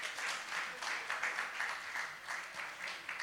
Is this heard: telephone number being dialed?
no